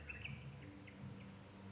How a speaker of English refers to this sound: Those birds are speaking to you. Listen to them, translate it to yourself.